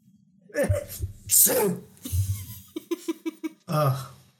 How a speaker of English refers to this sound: and then I give one of the cloaks like a good shake out. And see how much of a cloud it makes trying to clean it a little. It does cause you to cough and sneeze because you have allergies.